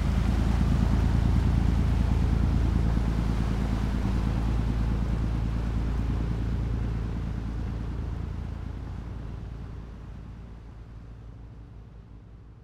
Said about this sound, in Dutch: Hè, want we kennen een boot, kennen we natuurlijk, en we kennen ook een schip. Maar het is een schip en dat is eigenlijk ingericht voor het vervoeren van containers.